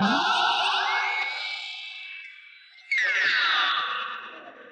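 Electric guitar played through a Binson Echorec tape-style echo unit, its sliding notes smearing into a dense repeating wash that fades, then a second loud attack swoops downward and trails off. No voices.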